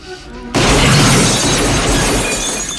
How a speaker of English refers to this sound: It's a laser gun. And like incendiary rounds, yeah, too. Yeah, destroys the TV completely.